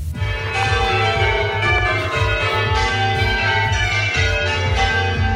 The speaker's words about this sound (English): The bells at West Meon Church have tolled for their last time. The bells in the Church of St John the Evangelist in West Meon rang for the last time on Saturday evening.